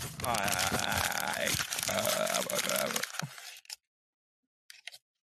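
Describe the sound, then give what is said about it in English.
A sheet of paper is crumpled loudly, a dense, continuous crinkling and crunching for about three and a half seconds that stops abruptly, then silence broken by one brief soft rustle. “I just crumpled up a piece of paper that I needed.”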